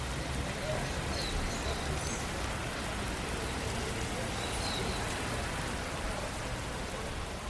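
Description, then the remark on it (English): Steady, dense rain pours down on Avenida Paulista, a city's most famous avenue, hissing continuously across the whole stretch, a broad wash of noise with a low rumble underneath and a few faint chirps peeking through. “Standing here, with the rain pouring down, it's hard to believe that this city, in the world's most water-rich country, is threatened by drought.”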